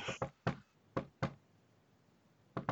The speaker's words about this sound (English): Let me try to knock on the door again.